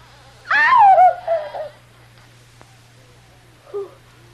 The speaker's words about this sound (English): Kitty stares horrified as the door, which she has so carefully locked, begins slowly opening.